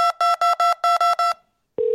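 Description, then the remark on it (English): Seven quick, evenly spaced keypad tones from numbers pushed on a cell phone during a call to the San Francisco West Target Store's automated menu, each a bright two-note beep, followed after a brief pause by a steady, lower single tone. “Oh, are you just pushing numbers on your cell phone?”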